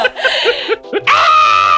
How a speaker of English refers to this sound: There's a lot of screaming. A lot of screaming in it. Yes, there it is.